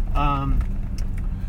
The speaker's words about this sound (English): We're driving home, guys. You got some traffic reports. We're driving home. We're in a truck.